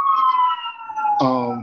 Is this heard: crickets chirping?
no